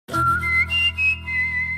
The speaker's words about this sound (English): In the UK, one of my favourites is the whistling one from TSB.